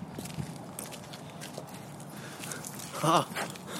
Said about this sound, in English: Oh, that's probably, everyone listening's probably happy we're sitting now because I could hear our feet crunching along on the path. Oh, yeah. That was a pretty crunchy path.